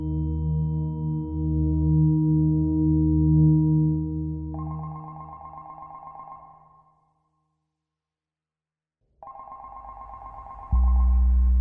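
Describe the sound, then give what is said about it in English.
A telephone at an embassy in Washington, D.C. rings twice in warbling bursts separated by a silent pause, the first ring rising over a low sustained drone, the second joined by a deep rumble at the end. “Back in D.C., a phone rang at the embassy.”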